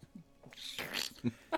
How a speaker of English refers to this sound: just jumped because the dog made a noise.